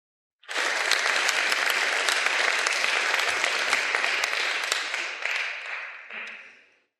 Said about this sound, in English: All right, please give those folks a round of applause.